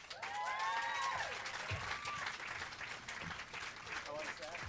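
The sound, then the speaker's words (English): A crowd cheers and applauds loudly for Tarzan actors Anton Yetterholm and Kellan Lutz, with dense clapping and high whoops and screams rising over the roar throughout. “Ladies and gentlemen, please make some noise for our Tarzans, if you will.”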